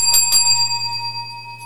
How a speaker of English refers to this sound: I rang that bell.